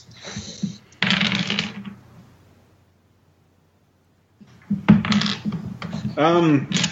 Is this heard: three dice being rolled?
yes